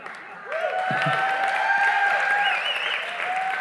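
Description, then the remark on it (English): An audience bursts into loud, sustained clapping with scattered shouts and cheering voices rising over it. The dense applause holds steady for a few seconds without letting up. “Now, if you shout and clap more, I promise I'll be really good.”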